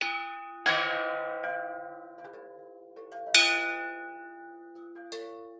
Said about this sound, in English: Okay, I'm gonna ring the bell. Just give me a second.